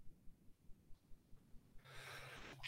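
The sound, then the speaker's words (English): A loud sneeze: a run of quick soft breaths builds into a noisy rising intake, ending in a sharp explosive burst. No one speaks. “A sneeze. Bless you.”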